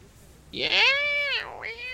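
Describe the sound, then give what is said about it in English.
A single loud, drawn-out cat meow, its pitch holding steady before dipping and rising again at the end, with no talking over it. “My god, in there, cat.”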